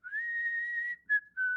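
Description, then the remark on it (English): A clear, steady whistled tune: one long sustained note with a slight upward glide, then two shorter notes after brief pauses. It is fairly loud, alone with no talking. “I wanted to learn how to whistle perfectly after listening to that song.”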